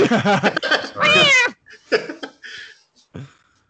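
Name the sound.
cats meowing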